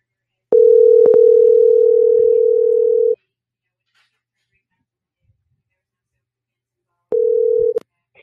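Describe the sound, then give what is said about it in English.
A loud, steady telephone dial tone hums for a few seconds, broken by a couple of sharp clicks, then cuts out; after a pause it briefly returns before another click ends it, as someone tries to phone a person to continue an interview by phone. “Let me see if I can get him on the phone right quick.”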